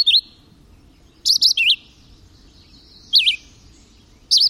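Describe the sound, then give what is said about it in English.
A red-eyed vireo sings short, sweet whistled phrases separated by brief pauses, loud, against a quiet background of soft, low ambient noise. “But the North American record holder may well be the red-eyed vireo.”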